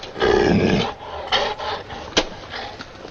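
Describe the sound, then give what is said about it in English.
A female dog growls, a long rough snarl followed by several shorter throaty rumbles and one sharp burst, with no talking. “But, Rosalind, we can't take that mutt all the way to Brighton.”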